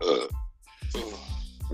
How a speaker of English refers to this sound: I'll go 30 years trying to say, I feel really burpy at the minute, and I just want to get it out. Because sometimes I feel like I'm going to burp halfway through the intro.